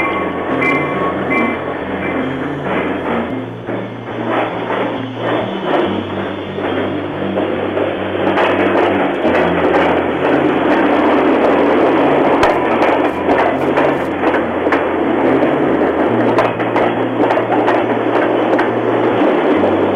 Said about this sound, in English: There's a train.